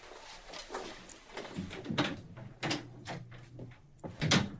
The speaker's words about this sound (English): Both times I played all the way through that, I wanted to talk through that final moment of him walking out the door there, which is definitely part of the art, so I feel guilty.